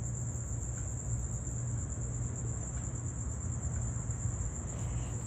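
A steady, high-pitched chorus of crickets chirps continuously outdoors at night, with a low background rumble underneath and no one speaking.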